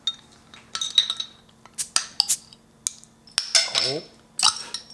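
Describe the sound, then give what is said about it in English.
A bottle of Nuclear Sunset beer being opened: a run of sharp glassy clinks and metallic taps, then a brief burst of hiss around the cap, followed by more clinking, with a low steady hum throughout. “All right, let's open her up.”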